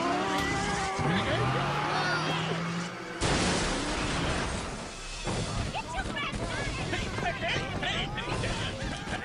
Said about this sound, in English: We crashed the car into the chicken shop.